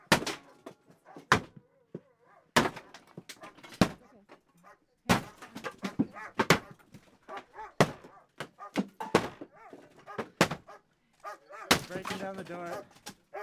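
Police force a door in on Wet'suwet'en land with a series of loud, heavy thuds and slams at irregular intervals, while people shout in the background between the blows.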